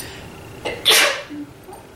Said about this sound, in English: Here comes the sneeze.